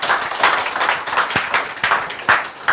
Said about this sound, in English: Give the Lord a clap of offering.